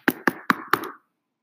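Four sharp knocks on a door in a quick, slightly uneven rhythm, with a short hollow ring after each, then silence.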